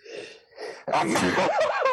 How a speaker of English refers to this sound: Oh my God! What the hell is that? That was a painful sneeze. That was like a Looney Tune sneeze. You know what I mean? Yeah, like that was like you were falling off a canyon sneeze.